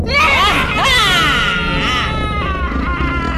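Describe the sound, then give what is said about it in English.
Loud, layered howling and high shrieks overlap continuously, with wavering pitch glides rising and falling like a chorus of eerie creatures wailing, no speech. “"And you drove us to hide in the dark corners," howled the boggles, and all the things joined in with great howling till bushes shook and the water gurgled.”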